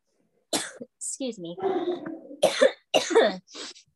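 Several harsh coughs come in separate bursts, with a brief strained vocal sound between them. No one speaks.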